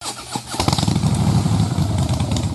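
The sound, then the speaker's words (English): A Harley Davidson motorcycle engine starts with a sputter and quickly settles into a loud, low, rumbling rev with a steady throbbing pulse throughout, with no voices. “Who needs a rev up? For Harley Heaven, the Harley Davidson Pan America is coming to Harley Heaven in Melbourne, Dandenong and Ringwood.”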